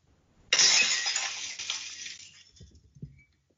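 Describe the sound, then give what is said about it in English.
Glass suddenly shatters with a loud, bright crash, then the shards tinkle and scatter as the sound fades, ending with a few last clinks of debris; the glass-shattering sound is tied to Steve Austin. No voices are heard. “Glass Shattering, Steve Austin, innit?”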